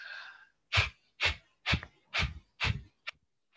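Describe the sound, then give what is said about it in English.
Five sharp, forceful bursts of breath pushed out through the nose in a quick, even rhythm, loud, followed by a shorter puff and a softer breath; no talking. A breathing exercise of forceful exhales through the nose. “Taking air out of my nose.”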